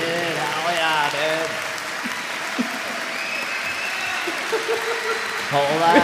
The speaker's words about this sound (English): Whoa, dude. You guys are too kind. You know, it'd be better if you were just all sucking my dick, but I guess clapping's cool.